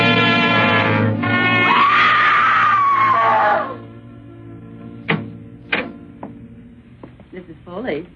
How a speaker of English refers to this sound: In a moment, she was a blazing torch. And the odor of burning filled the room. I could see her face. Surprised, contorted with pain. She turned and looked out the bed of the bucket flaming in her hand. And then she went screaming out the front door.